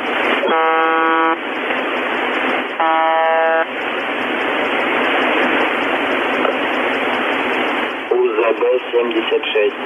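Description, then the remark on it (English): A harsh, steady buzzer tone from a constantly keyed microphone, broadcast over heavy radio static, sounding in two long bursts near the start, with a voice briefly breaking through the hiss at the end. “Just like I said, that buzzer, like I said, it's being broadcast. There's a keyed mic there and it's just going to town all the time.”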